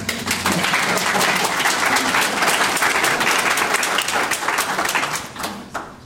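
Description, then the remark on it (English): An audience applauds the director of a stem-cell research program, clapping steadily for several seconds, dense overlapping claps forming a loud, even wash of noise that tapers off slightly at the end. “And he also has, hold your applause.”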